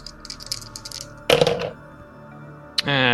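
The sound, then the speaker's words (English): A quick series of light, rattling clicks, then a loud clattering burst as two dice are rolled and tumble across a hard surface, followed by a pause and one more sharp knock. “I need you to roll 2 dice, and we're going to see who can roll higher.”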